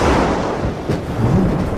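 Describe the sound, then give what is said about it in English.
A deep, rolling rumble of thunder from a big storm fills the moment, loud, swelling slightly toward the end with no voices over it. “Well, I hope your plan doesn't get messed up when tonight's big storm hits.”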